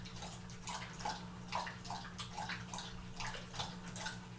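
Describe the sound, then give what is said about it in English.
A pet water fountain running low on water sputters and gurgles in regular bursts about twice a second over a steady low motor hum, fairly quiet, with no one speaking. “And the water dish is running out of water, so you can hear the motor go.”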